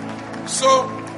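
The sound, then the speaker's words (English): An audience claps during a sermon in a dense, continuous patter that swells briefly near the middle, with faint sustained musical tones underneath. “Increase that clap of him because I'm going to prophesy.”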